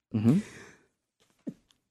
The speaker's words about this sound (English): That was me sneezing.